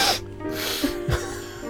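A loud, forceful nasal snort, a sharp, hissing inhale up the nose like someone snorting a line of powder, with no talking.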